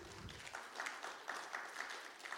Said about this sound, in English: Yeah, you can clap.